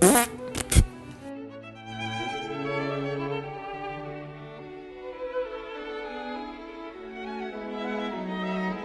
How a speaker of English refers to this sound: That's all for today. Fart sound.